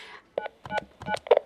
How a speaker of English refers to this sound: For ER assistance, dial 372 on the desk phone